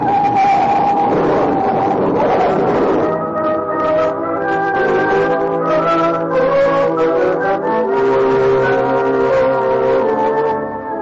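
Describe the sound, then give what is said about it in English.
Loud car chase and crash sound effect as a pursuing car closes in and crowds a chauffeured car: a rush of noisy engine and impact clatter in the opening seconds, followed by several blaring horn-like tones held steadily to the end, with no talking. “Oh, a little auto accident. The other car didn't bother to stop.”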